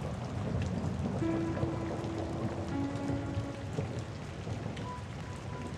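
Steady rain falls continuously, a dense hiss of drops pattering on a surface with a low rumbling undertone, no voices present throughout.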